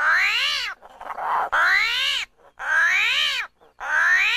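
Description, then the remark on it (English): An armadillo gives four loud, squealing calls in quick succession, each one whining upward and then sliding back down, with short quiet gaps between them and no talking. “That was an armadillo.”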